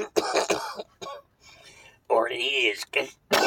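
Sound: coughing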